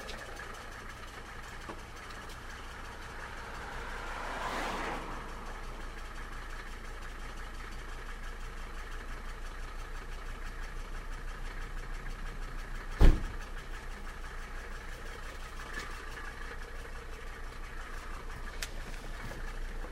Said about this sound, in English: Cars seemed a lot noisier than usual. Maybe not a lot, but noisier.